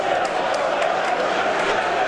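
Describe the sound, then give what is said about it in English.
A dense roar from a stadium crowd of fans riled up after a referee's yellow card at a match, loud and steady throughout, with a wash of shouting voices and a few sharp clicks or claps poking through. “So, that's just stirred the fans up more, hasn't it? Yeah, it's riled everybody up.”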